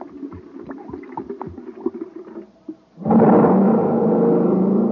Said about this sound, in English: Wow, that jet cycle is supercharged now. Yes, sir, gang, when it comes to supercharging, you need super fuel.